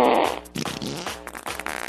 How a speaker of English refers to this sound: For the Celebrity Fart of the Week. I'm farting now.